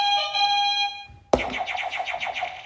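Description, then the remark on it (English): A steady electronic buzzer tone holds for about a second, then a sharp hit triggers a rapid pulsing, warbling electronic buzz. Game-show buzzer sounds, loud, with no talking. “I mean, can we just hear the buzzers again? Because I enjoyed those.”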